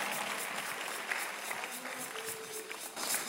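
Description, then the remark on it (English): An audience claps steadily during a sermon, a dense, continuous patter of many hands at moderate volume, with a faint sustained tone drifting underneath. “Don't try to convince me with your clap.”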